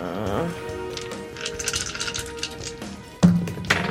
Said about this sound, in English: Whoa. Ah! That got away from you. Wild dice. Yeah, dice it's running away. Run away.